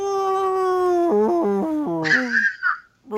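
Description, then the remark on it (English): A person imitates whale song in a loud, sustained tone that steps down in pitch, then rises into a high, warbling squeal before fading. No other voices or sounds are present. “Summoning a whale.”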